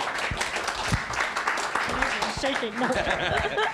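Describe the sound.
A crowd applauds to welcome a woman invited to come up and share. The applause is steady, with dense overlapping claps filling the whole few seconds at a fairly loud level, and scattered voices and cheers rising through the clapping toward the end.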